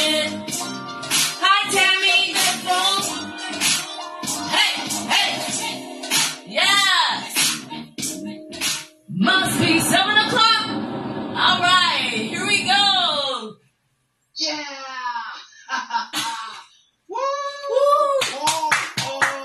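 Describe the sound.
A lively crowd cheers and claps, many voices whooping and shouting over a patter of hand claps, with a couple of short pauses before the noise swells again.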